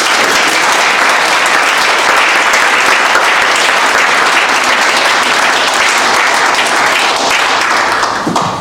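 A crowd applauds the panelists loudly and steadily, a dense wash of many hands clapping that holds for several seconds before starting to thin out at the very end.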